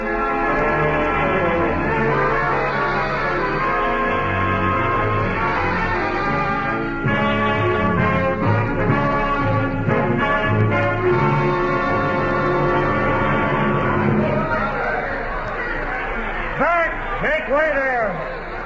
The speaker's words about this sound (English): The usual entrance of our dear Essex. The crowds huzzaing, the girls ogling.